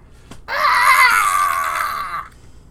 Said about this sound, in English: At this point, you hear the screech again.